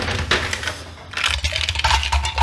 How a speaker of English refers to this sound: We're gonna ice up our mixing glass.